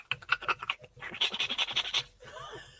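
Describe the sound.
A voice imitates a hand water-filter pump, one with a little stone on the end of a hose floated in a river and screwed onto a Nalgene bottle, with rapid, rhythmic breathy pulses, roughly a dozen quick strokes of hissing air and clicks, ending in a softer trailing whoosh.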